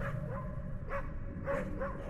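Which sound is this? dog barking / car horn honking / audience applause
dog barking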